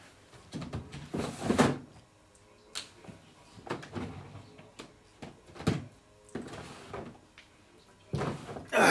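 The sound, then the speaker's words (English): A drawer slides open, followed by a series of scattered clunks, rattles and shuffling knocks as items inside are pushed around while someone searches it for a PS2 game, moderately loud, ending with a louder scrape. “Actually, I might have it in my drawer right here.”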